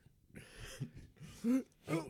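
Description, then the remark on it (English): A voice acts out Sean Connery choking and suffocating in a plume of smoke: several strained, rasping bursts, the last two louder and more throaty, with no other sound around them. “Sean Connery is suffocating.”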